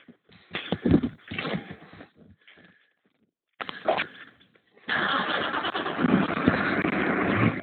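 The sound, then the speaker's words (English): A car engine cranks in several rough, sputtering bursts, goes quiet for a moment, cranks again, then catches and settles into a loud, steady running rumble. “It's going to go click, click, and boop, boop, boop, and then poop, and then it'll finally start.”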